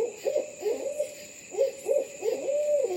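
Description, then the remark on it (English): An owl hoots in quick, wavering bursts, two short bouts of warbling calls separated by a brief pause, clear over a steady faint background hiss, with no talking. “While their acute senses and physical adaptations help them survive and succeed in nature, when closely observed, owls have a curious charisma and surprising social skills.”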